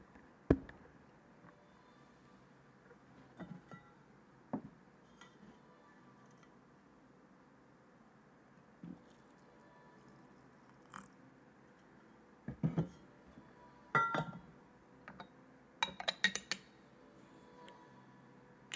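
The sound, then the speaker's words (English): Faint, scattered clinks and taps of a small glass teapot of about 200 milliliters being handled, coming in irregular bursts with quiet gaps, busier and brighter toward the end; no one speaks. “The teapot I'm using is a glass teapot, 200 milliliters or so, so it's pretty small”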